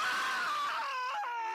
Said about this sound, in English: was a 4-second scream is heard, four whole beautiful seconds.